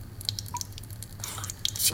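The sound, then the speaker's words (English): Water drips from a faucet in a steady, irregular patter of small plinks, with a faint low hum underneath and no voices. “Hey, asshole, turn off your faucet. Sink, radiator, bathtub, whatever the hell is running.”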